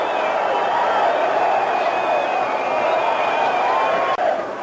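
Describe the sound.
A stadium crowd cheers as Senna heads to the podium, a loud, unbroken roar of many voices, with a thin, steady whistle-like tone running through it and a momentary dip just before the end.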